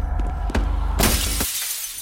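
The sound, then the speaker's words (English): A glass balcony door is slammed open and shatters into pieces with a sharp crack, followed by a loud burst of breaking glass. Tinkling shards fade out over a low rumble. No one speaks. “The thing broke into 1,000 pieces.”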